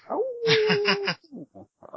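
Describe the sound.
A person's voice imitates a wolf howl: one sustained, wavering, gravelly cry lasting about a second, fairly loud, followed by a few short, breathy vocal bursts.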